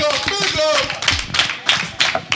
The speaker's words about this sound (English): He needs an applause right now because he is one of the people that put this panel together.